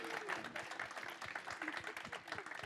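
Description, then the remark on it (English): Steady, dense clapping from two children, a fast irregular patter of claps holding at an even level throughout, with murmured voices and laughter mixed in underneath. “This, it looks, our kids are clapping.”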